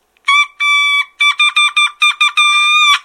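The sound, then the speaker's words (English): A reed game call, blown with the bottom lip half on the sound plate and half on the reed, gives shrill, whistling squeals: two drawn-out notes, a quick run of short choppy bursts, then a final long squeal. No one speaks. “Bottom lip, half on the sound plate and half on the reed. Make it squeal, make it whistle.”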